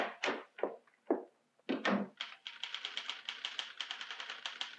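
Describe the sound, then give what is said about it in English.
Typewriter keys thump heavily a few times, then break into a rapid, steady run of clacking strikes, fairly loud, with no voices, heard from the small waiting room of Fantas and Arbogast Advertising. “The typewriter thumps louder.”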